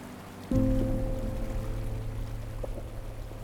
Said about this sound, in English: I lean over the opening in the center, the one kids used to jump into, the one 20,000 people came out to see, and listen to the water that we are taking from the river. The water that is both the lifeblood of a city and blood water.